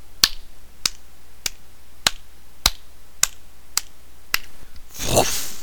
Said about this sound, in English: Alright then, let's start with 8 claps.